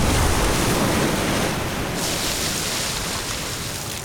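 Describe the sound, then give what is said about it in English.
Loud, churning water in a tank geysers up after grenade explosions and splashes back down into a mass of white bubbles, a dense hissing roar like surf that holds steady for several seconds before easing off slightly, with no voices. “The resulting explosions caused the water to geyser up and splash back down into a churning mass of white bubbles.”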